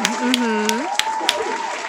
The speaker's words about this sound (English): Applause. Oh, wow.